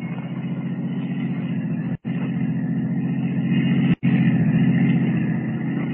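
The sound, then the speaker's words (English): A waiting taxi cab's engine drones steadily as it drives off following a blue roadster, a continuous low rumble at a constant level, broken by two brief, abrupt dropouts. No voices. “Rather than risk detection by trailing the girl as Superman, Ken steps into a waiting taxi cab and follows her.”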